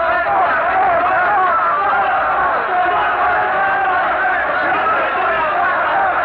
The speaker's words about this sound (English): But the crowd will not be moved. Their frenzied, hysterical shouts are filling the square with a mighty roar of fury, and they're stoning Savonarola now, all turned against the man that they once loved and revered.